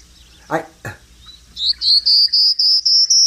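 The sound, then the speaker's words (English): A human voice imitates a prairie warbler's song: a run of about seven thin, high, buzzy notes that climb slightly in pitch, after two short breathy sounds. “That's my imitation of a prairie warbler.”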